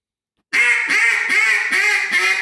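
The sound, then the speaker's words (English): A duck call from Jargon Game Calls blown in a rapid series of five loud, raspy quacks, each note buzzy, following one another without pause after a moment of silence. “Making Duck Calls with Jargon Game Calls”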